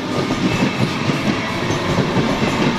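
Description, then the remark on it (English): A train rolls steadily past at a suburban train station at Broadmeadows in Melbourne's north, Victoria, its cars producing a loud, continuous rumble with a faint rhythmic clatter of wheels on track throughout. No one speaks. “It looks like so many other suburban train stations.”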